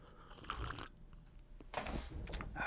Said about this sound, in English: And I'm actually going to tell you what's in my cup today. Hold on a second. The package was in my breast pocket. Hold on, I'll take a sip.